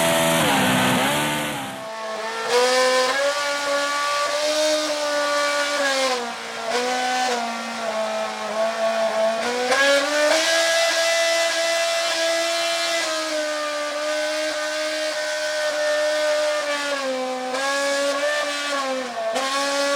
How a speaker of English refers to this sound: Engines can make a discernible pitch, just as any instrument can, as these clips prove.